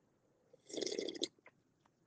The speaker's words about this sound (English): When they make that noise when they sip, epic. I like doing it just to be annoying.